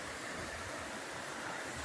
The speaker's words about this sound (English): Look at that shit. Look at that shit. East Caney Creek. Beautiful water everywhere.